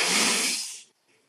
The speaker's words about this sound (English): Now collapse the balloon, exhale through your mouth.